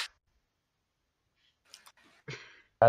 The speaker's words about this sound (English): It's such a moist clap, Jesus Christ.